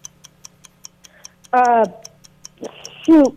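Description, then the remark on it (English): A 60-second game clock ticks during a movie clue-guessing game, in a steady, fast rhythm of about five crisp ticks per second, continuing throughout while a voice briefly speaks over it twice. “Got 60 seconds on the clock, and your time begins now.”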